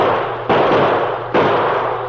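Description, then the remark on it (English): Two loud gunshots ring out a little under a second apart, each a sharp, booming crack followed by a long, noisy ringing tail, as the man called Neiser shoots a man in the leg. No one speaks. “The one they called Neiser put a bullet in him.”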